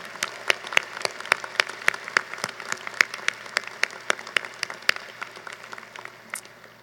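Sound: round of applause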